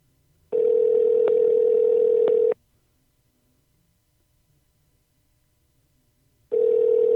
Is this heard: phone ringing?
yes